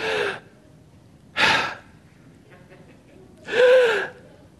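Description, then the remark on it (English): A crowd of people draws deep breaths together, three loud breathy rushes with pauses between them, the last one the longest and fullest. No one speaks. “Verse 6, let everything that breathes praise the Lord.”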